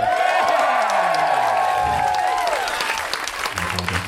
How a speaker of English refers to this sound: Show saver two is ask people to cheer for previous MaxFunCon performers in the hopes that they will mingle the memories of the shows and will look back on your show somewhat fondly. Let's hear it for Super Ego!